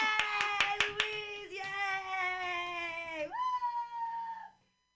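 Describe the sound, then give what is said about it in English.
About six quick hand claps on a video call over the first second, ringing over a sustained high-pitched vocal tone that holds steady, then leaps higher in pitch before cutting off. “I didn't know whether to fucking unmute or clap, and I was trying to do both at the same time, and that's not fucking possible.”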